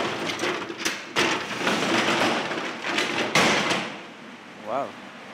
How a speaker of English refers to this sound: So the salmon leap is a natural channel between Loch Fia and Furness, and it has quite a sharp 15-metre drop, so it's kind of a classic waterfall that you'll see salmon jumping up.